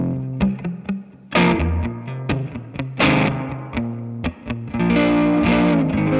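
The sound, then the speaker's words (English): Electric guitar played through a Strymon Blue Sky reverb pedal on its plate reverb, with a washed, lingering reverb, strummed chords and picked notes ringing out loudly with a slightly gritty, effected tone and long decaying tails. “Yeah, so I really love, right now I have the Strymon on right now, the Blue Sky. I love the plate reverb.”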